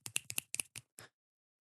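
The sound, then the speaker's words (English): A quick, uneven run of about eight crisp finger snaps given as a coffee shop clap after a poem reading, sharp and bright, bunched in pairs at first and then spacing out, with no talking and silence after the last snap. “Coffee shop clap.”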